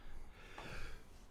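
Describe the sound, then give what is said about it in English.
A single quick sneeze, a short breathy burst with a sharp airy release, fairly soft and heard on its own with no talking. “You can't be sneezing.”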